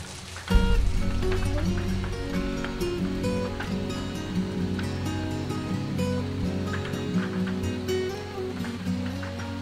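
Steady rain patters against a window with scattered close drops tapping, continuous throughout, over a low sustained humming tone that swells in just after the start.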